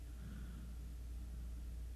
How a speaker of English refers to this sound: That's what I choose to hypnotize myself with. The beauty of just the cars driving by and the leaves blowing in the wind.